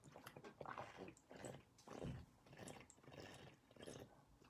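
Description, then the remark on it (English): Someone sips water, with a series of wet gulps and swallows in short bursts over a few seconds, and no talking. “Water, stay hydrated before any tappings, before any kind of energy work.”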